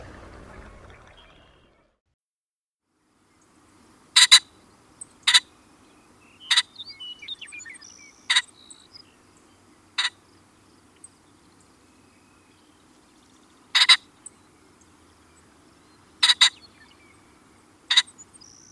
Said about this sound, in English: However, here are some examples of ring-necked pheasant sounds.